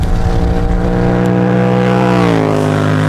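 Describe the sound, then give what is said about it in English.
A Duke motorcycle engine hums steadily and loudly in a rich, buzzing drone while riding the open road in sunshine into Masterton, its pitch holding even before dipping slightly lower near the end. No one speaks. “Well, the sun is still shining and the Duke is humming.”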